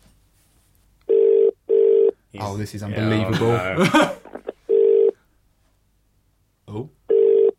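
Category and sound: signal or alarm, phone call ringing tone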